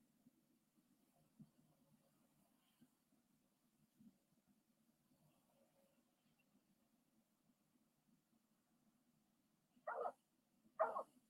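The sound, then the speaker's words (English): A dog barks twice near the end in a scene of the film Wanda, two sharp, fairly loud barks in quick succession after a long stretch of quiet low rumble. “Yeah, dog barking.”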